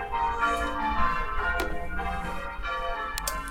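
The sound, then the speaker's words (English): A bell rings out in a ding-dong chime, its tones sustaining and overlapping for a few seconds at a steady, moderate loudness, with no talking over it. “Leo must have heard we're coming in for a couple of pints. Ding dong.”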